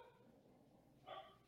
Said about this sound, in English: Even the dogs are upset about this. I know, my dog's going nuts.